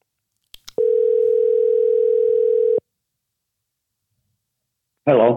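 A couple of soft clicks, then a steady telephone dial tone hums clearly for about two seconds and cuts off as an outgoing phone call is placed. After a few seconds of silence, a voice briefly starts at the very end.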